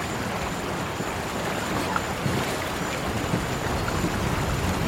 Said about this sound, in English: I think it's just the river up ahead! Roger, what is that? Oh no! It's a waterfall!